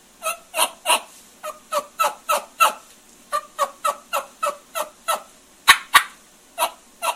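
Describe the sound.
A steady run of soft, raspy turkey hen yelps, imitated on a latex mouth diaphragm call, about twenty short notes in groups, plain hen yelps beginning with an under-the-breath type yelp, with a couple of sharper, louder yelps near the end and no talking.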